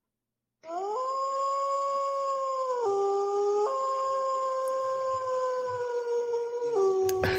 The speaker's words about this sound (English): Was that a wolf? Yeah.